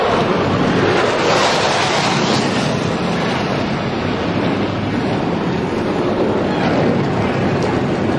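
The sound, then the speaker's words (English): A loud, sustained roar of aircraft flying over Daytona International Speedway just after the start-engines command for the Great American Race, a dense rushing rumble that holds steady throughout without fading, with no voices heard. “The birds came over right on time.”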